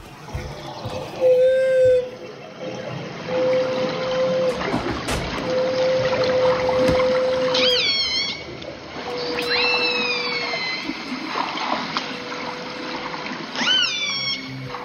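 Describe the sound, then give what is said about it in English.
Live whale feeding calls picked up underwater by a hydrophone station: long, steady moaning tones and several quick, rising high-pitched whoops repeat over a constant hiss of water noise, with no voices. “these are live feeding calls coming into the Finn Island station”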